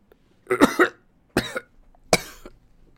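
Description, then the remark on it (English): A run of harsh coughs in three bursts, the first a quick double cough, then two more single hacks spaced about a second apart, with no talking around them. “Luke coughed and his lips glistened red.”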